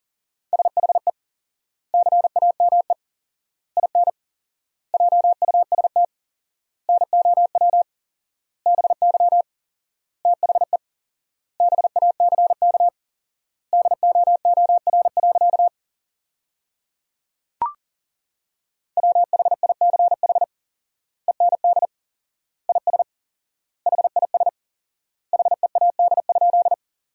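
Rapid Morse code at 40 words per minute with fourfold word spacing, sending sentences built from the top 300 words: a steady, mid-pitched beeping tone keyed in quick bursts of dots and dashes, with pauses between words and a single brief click midway.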